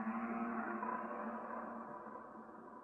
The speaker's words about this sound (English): You'll hear the whales talking to you.